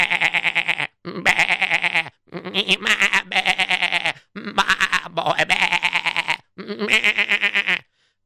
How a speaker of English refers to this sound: And you heard not just the sheep, you heard cattle also.